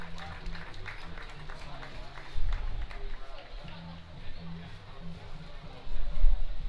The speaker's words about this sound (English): Boyertown comes onto the field. Their fans cheer them on.